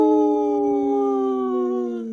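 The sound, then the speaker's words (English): A person lets out one long, loud wolf-like howl, the voiced tone holding steady and then sliding gently downward in pitch for about two seconds, with no talking. “This portion of the show is supported by Howling for Wolves, protecting wolves for future generations. Howl!”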